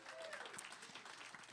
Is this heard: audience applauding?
yes